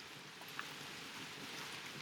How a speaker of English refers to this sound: Sorry about all this rain, by the way. We are sitting on the porch. Yeah, so sorry. I'm really going to hear some ambiance.